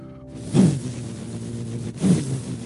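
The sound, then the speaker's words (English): An 800-something horsepower Hellcat muscle car in a car dealership showroom revs twice, each surge a deep, throaty roar rising over a steady low idling rumble, with no voices present. “He said, that's a 800 something horsepower Hellcat supercar they had in the showroom.”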